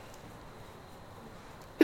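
human body sound, sneeze

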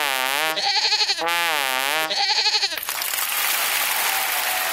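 animal, goat bleating

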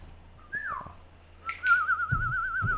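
bird, bird calling

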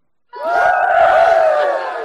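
sound effect, crowd cheering sound effect

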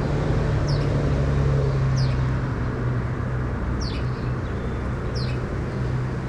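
bird, bird calling

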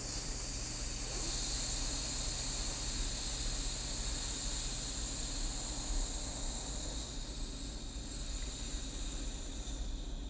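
human body sound, snake-like hissing exhale

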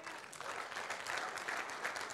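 crowd, audience cheering and applause

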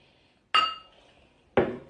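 household object, glasses clinking

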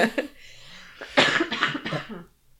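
human body sound, coughing

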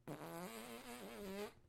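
human body sound, fart

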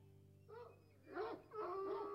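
animal, hounds baying

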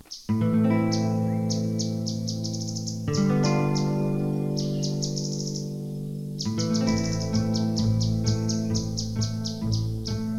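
bird, canaries chirping

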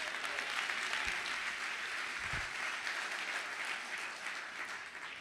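crowd, audience applauding

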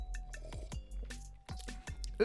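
food or drink, sipping beer

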